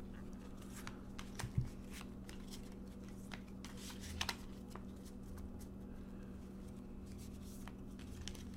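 Tarot cards being shuffled for a tarot reading: soft, irregular flicks and light papery clicks continue throughout, quiet, over a faint steady hum with no talking.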